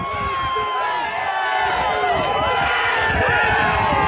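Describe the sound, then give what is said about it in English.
A rowdy protest crowd behind barricades scuffling with police at the Capitol, as police move the barricades and people walk through: a dense, steady roar of many overlapping shouting voices, loud and unbroken throughout, with scattered yells rising out of the din. “So yeah, there's like a rowdy crowd behind the barricades, and the police, the guys with jackets that say police, just move the barricades, and a whole bunch of people start walking through.”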